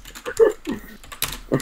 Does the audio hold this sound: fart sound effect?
no